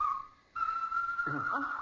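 A bird near an old barn calls with a steady, sustained high whistling note that breaks off briefly, then resumes and holds on while a voice starts talking beneath it toward the end.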